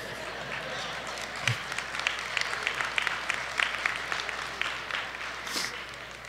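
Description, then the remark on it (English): Scattered applause from a church audience, mostly women, after a Valentine's Day proverb in a sermon, a steady patter of many hands clapping at moderate volume, with no clear speech over it. “Most of the women are clapping.”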